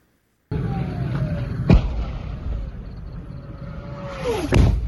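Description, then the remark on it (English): Rocket explosions strike the Israeli city of Sderot near the border with Gaza, recorded by a CNN camera crew during one of at least two rocket attacks: two sharp, booming blasts a few seconds apart, each preceded by a falling whistle, over a constant loud rumble. The strike hit the courtyard of a kindergarten. “A CNN camera crew was in Sderot near the border with Gaza and recorded one of at least two rocket attacks on the Israeli city.”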